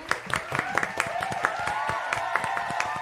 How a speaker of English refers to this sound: Round of applause for Trina.